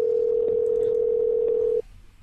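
A steady, loud telephone tone hums for nearly two seconds while a call is placed, then cuts off abruptly into quiet line noise. No one speaks.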